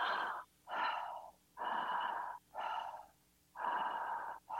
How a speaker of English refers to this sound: And it works by raising the energy in the body, the vibration in the body, by breathing in a what's described as a connected way, meaning that you omit any pause between the inhale and the exhale. So it's like this.